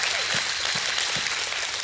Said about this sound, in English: Somebody give God a hand clap of praise this morning.